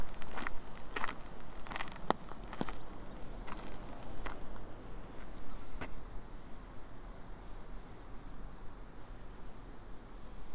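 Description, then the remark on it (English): Footsteps crunch irregularly along an outdoor coastal path, walking down to Lizard Point, thinning out after about six seconds, while a series of short, evenly spaced high chirps repeats over a steady outdoor hiss. “Walking down to Lizard Point, and there's a chough right in front of me.”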